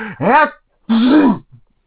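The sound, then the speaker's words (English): A theatrical sneeze in the Zanzibar: a rising, breathy intake followed after a short pause by a louder, strongly voiced burst, then silence. No talking. “Another person in the Zanzibar notices the sneeze and urgingly requires that he makes the napkin into something else.”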